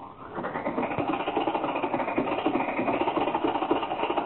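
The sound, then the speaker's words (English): An old car engine sputters and chugs loudly as the car sets off, a rapid, uneven rattling rhythm that runs steadily for several seconds with no voices over it. “Now, hold on, everybody. We're off.”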